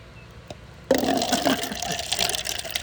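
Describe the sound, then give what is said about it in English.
After a brief quiet moment, liquid suddenly begins pouring into a glass, a steady splashing gurgle that continues for about two seconds with no one talking. “Pour me some.”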